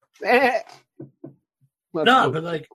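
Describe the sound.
A person imitates a sheep bleating: two loud, quavering baa calls separated by a pause with a couple of short, soft vocal sounds in between.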